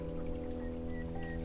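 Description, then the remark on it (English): In a sunny forest, a river flows with a steady rushing wash beneath sustained, ringing harmonic crystal tones, while faint, brief bird chirps flicker high above near the end. “I'm here in the forest. Hopefully you can hear the river and the birds singing and the sun shining as well.”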